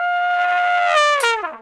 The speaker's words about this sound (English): And blow my nose.